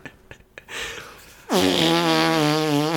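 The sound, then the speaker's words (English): A loud, buzzy fart noise drops in pitch, then holds a steady, fluttering drone for about a second and a half. Faint clicks and rustling come just before it. “Fart noise.”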